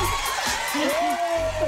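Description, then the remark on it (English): A crowd in Melbourne cheers and whoops loudly and steadily, with rising whistles and shouts layered over a dense wash of applause-like noise for the whole stretch. “Oh, the crowd is going wild well, down in Melbourne.”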